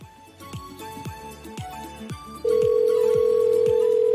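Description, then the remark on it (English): A telephone line on an outgoing call back to a UPS customer service agent: regular, rhythmic electronic tones pulse for a couple of seconds, then a loud, steady, unbroken tone takes over, clear, with no one speaking. “I'll call her back.”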